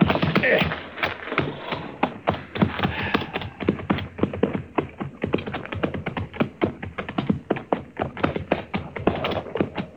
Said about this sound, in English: Looks like horses down there. Yes, sir. I can see their heads now. But I don't see nobody driving them.